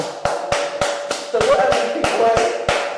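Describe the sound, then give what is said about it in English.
A group in a studio claps hands in a steady rhythmic beat, about ten sharp claps in three seconds, while voices talk and cheer underneath throughout. “Yo, let's clap our hands”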